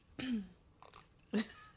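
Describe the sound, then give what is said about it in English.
A person clears their throat in two gruff, raspy bursts separated by a short pause, with a softer breathy rasp in between. “Let me clear my throat.”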